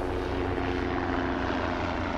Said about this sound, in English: The chopper. Bloody great helicopter.